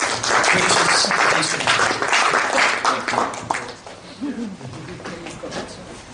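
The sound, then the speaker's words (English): An audience in a church applauds loudly as the speaker comes in, a dense, steady wash of many hands clapping that gradually thins and softens toward the end, with a few faint voices murmuring underneath. “So let's give him a round of applause as he comes in.”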